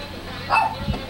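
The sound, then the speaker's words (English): A dog on a back porch facing a garden by the river in Mentum Paraná lets out one short, sharp bark, standing out briefly against a steady low background murmur before a softer trailing sound. “sits on the back porch with her dog, facing the garden.”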